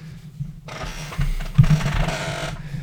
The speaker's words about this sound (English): Just smashed the speaker off my desk.